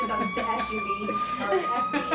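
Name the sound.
ambulance siren passing outside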